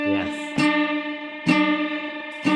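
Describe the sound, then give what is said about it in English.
A distorted electric guitar note growls as one B string is bent against the same note on the other B string, struck three times in a steady rhythm, each attack bright and loud with a thick, buzzing sustain full of harmonics. “But now I'm going to bend one of them.”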